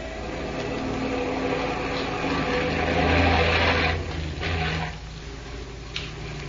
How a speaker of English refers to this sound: Those trucks will be here any minute.